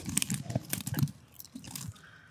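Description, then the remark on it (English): Crunching of potato chips being chewed, a quick run of sharp, crackly bites that fades into softer munching toward the end, with no talking. “Oh, these taste a little different. They're really crunchy.”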